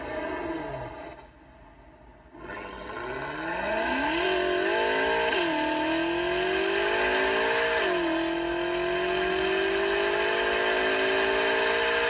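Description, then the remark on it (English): A synthetic BMW M140i car engine sound played from a phone app revs up through several rising gear shifts, its harmonic whine climbing and holding steady, loud and continuous with a slightly tinny, speaker-played quality. “I might just get that app and have it on the car. Make your car sound like it.”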